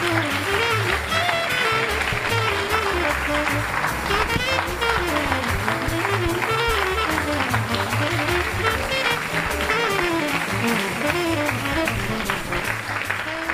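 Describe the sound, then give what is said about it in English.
An audience applauds five panelists at the end of an event, steadily and loudly for the whole stretch, a dense crackle of many hands clapping at once, with music playing underneath. “If you'd be so kind, please offer a warm round of applause for our 5 distinguished panelists.”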